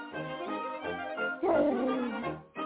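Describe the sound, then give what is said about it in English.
A dog barks and yips in quick repeated bursts, roughly twice a second, growing louder and more excited midway, with no talking over it. “As me grandmother's dog named Kitten.”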